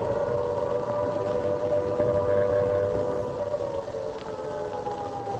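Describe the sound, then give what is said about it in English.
An air raid siren wails steadily over London at night as an air raid begins, a sustained rising and falling tone that dominates the scene, loud and continuous with a faint rumbling backdrop and no voices. “And there's the wail of the Banshee.”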